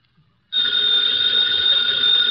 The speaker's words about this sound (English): Ladies and gentlemen, that phone bell means adventure. Hello? Hello? The young man answering the phone is Archie Goodwin.